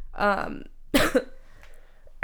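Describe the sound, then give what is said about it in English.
A person coughs, a harsh, raspy burst preceded by a voiced throat sound, then a quieter pause before another sharp cough cuts in at the end. “don't mind my cough again.”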